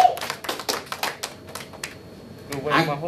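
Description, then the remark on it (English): A quick run of sharp hand claps celebrating the Chiefs winning the Super Bowl, roughly a dozen in an uneven, hurried rhythm, fairly loud, fading out before a brief voice is heard at the end. “So if you're a Chiefs fan, you need to know, clap that up.”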